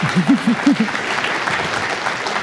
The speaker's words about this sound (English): That's when you clap.